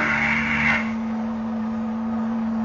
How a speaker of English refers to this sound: There was nothing. Nothing but the hum of the machine and the dull glowing of the tube.